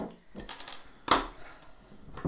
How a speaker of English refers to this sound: Your beers. Crack your beers open, and then we'll get started.